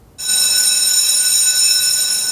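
A school bell starts abruptly and rings on loudly and steadily, a continuous bright metallic clangor with no pauses and no voices.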